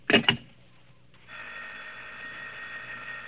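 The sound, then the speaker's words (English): Two quick, loud rings of a telephone bell, then a short pause and a steady, humming line tone that drones on. No one speaks. “Oh, what's the matter with this phone?”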